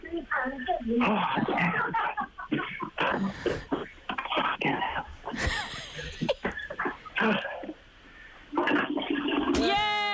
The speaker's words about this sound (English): And the last one, you need to flush the toilet again. Flush the toilet again, quick. Make sure we can hear this.